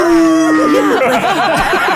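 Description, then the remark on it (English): A voice imitates a cartoon wolf howl, starting on a long steady tone that breaks into warbling, wavering yelps, with laughter-like vocal bursts overlapping it, loud. “Is her husband a cartoon wolf?”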